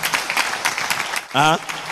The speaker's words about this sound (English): Can you clap a little?